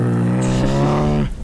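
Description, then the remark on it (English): A person imitates a motorcycle engine for a zombie riding a motorcycle in a told story, with a loud, steady, low buzzing hum from the throat. It holds for just over a second, then cuts off abruptly. “That one's on a motorcycle.”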